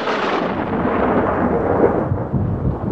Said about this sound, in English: Gee, man, ain't that storm a buster, though. Wild night, all right.